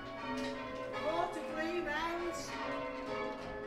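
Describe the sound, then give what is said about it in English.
Church bells ring continuously, their overlapping tones blending into a dense, steady wash of sound at a moderate, even volume throughout. “Around the same time Richard launched Dreamchild, he discovered bell ringing, this has become a lifelong passion.”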